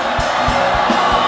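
A church service crowd roars and screams together in a loud, sustained wall of voices, with low rhythmic thumps pulsing steadily underneath.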